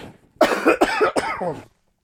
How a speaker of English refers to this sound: Excuse me, guys. I got a cough.